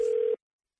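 A single short, steady electronic telephone tone sounds clearly for about a third of a second, then cuts off abruptly into silence. No voices are present.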